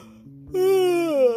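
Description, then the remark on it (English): A voice imitates the cat's yawn in a read-aloud story: one drawn-out, moaning vocal sound lasting about a second, fairly loud and steady, dipping and rising in pitch at the end, after a brief faint low hum. “The cat yawned.”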